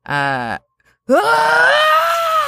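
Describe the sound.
A voice imitates the blood-curdling cry of a man screaming as a device is screwed into his skull: a short, low groan, a brief silence, then a long, loud wail that sweeps upward in pitch and holds strained and high until the end.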